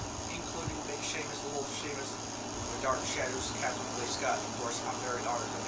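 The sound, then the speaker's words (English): An old air conditioner runs with a steady droning hum and a faint high whine, constant throughout, while indistinct voices murmur underneath. “No, that's just an old janky air conditioner.”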